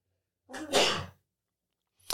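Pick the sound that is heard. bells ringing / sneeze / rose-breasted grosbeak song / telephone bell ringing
sneeze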